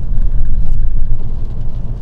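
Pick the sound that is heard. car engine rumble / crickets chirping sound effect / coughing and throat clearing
car engine rumble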